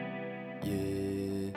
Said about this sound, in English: And it's built around this, like, this echoey guitar riff that, I mean, … could have done it. It's gorgeous.